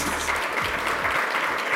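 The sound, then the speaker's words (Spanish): A church audience applauds steadily, a dense wash of many hands clapping at once, sustained and fairly loud throughout with no voices standing out. “¡Aplauso!”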